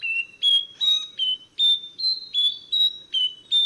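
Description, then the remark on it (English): A nightingale wren sings a steady series of clear, pure whistled notes, each short and slightly different in pitch, repeating at an even pace, alone with no other sounds. “Like a tone-deaf competitor on American Idol, this bird just whistles and whistles and whistles.”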